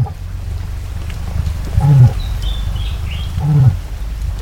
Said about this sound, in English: And cassowaries are capable of making remarkable sounds.